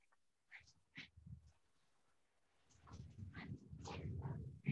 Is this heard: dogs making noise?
yes